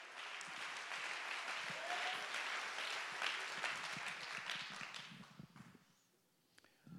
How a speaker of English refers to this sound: Oh, let's clap our hands and give him great praise.